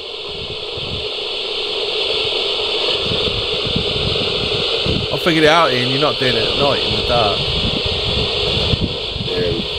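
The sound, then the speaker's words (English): Continuous crackling radio static from a scanning spirit box, with rapid choppy bursts of interference, while a person speaks briefly over it partway through. “Just seem to be getting interference.”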